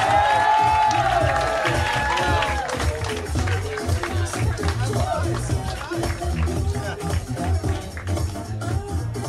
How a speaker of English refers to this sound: You guys, start clapping right now.